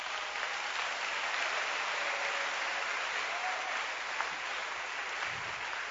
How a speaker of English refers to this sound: Clap your hands.